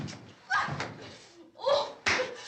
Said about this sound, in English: Well, there's the slap. Just not what I was expecting.